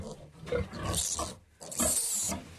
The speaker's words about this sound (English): The only thing about swine is that they scream when they are being hurt. We don't like this, so we call it squealing.